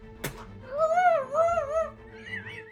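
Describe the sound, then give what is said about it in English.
A sharp thump, then a dog's high, wavering yelp that rises and falls twice in a drawn-out whine, followed by a fainter whimper, as a dog yelps after being bitten. Fairly loud, with no talking. “Sometimes they bite a little too hard and you hear that sound.”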